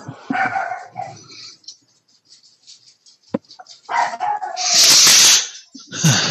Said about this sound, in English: It's that dog.